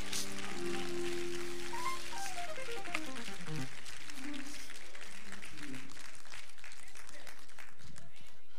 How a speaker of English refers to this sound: Now clap your hands and tell him thank you.